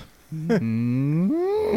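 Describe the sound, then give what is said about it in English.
A person imitates a cow on the Wake Up Crew show with a single long, drawn-out moo, starting low and rising in pitch toward the end, loud and sustained for over a second. “Cows don't go moo. No, people think they go moo, but they don't go moo. How do they go?”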